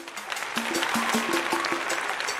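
A crowd applauding steadily, with dense overlapping claps that hold at a fairly even level for a couple of seconds and a faint low tone running underneath.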